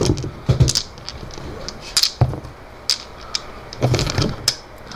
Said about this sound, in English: I really hope this dice right here doesn't mess up your dice tray. It'll be fine. It'll be fine.